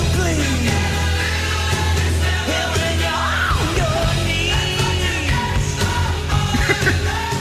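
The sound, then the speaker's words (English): A male rock vocalist shouts and wails over a loud, dense band mix, his strained voice rising and bending in pitch above steady bass and drums throughout. “What the hell is going on? This boy's shouting.”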